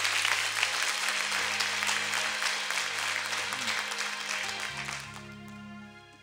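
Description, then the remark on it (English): An audience breaks into sustained applause, giving God a hand clap, a dense wash of many hands clapping at steady loudness that gradually thins out near the end as a low tone hums underneath. “Give God a hand clap for real.”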